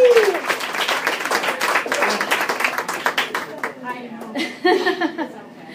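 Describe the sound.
An audience claps steadily in a dense, crackling burst of applause that thins out toward the end, with a few voices and cheers mixed in.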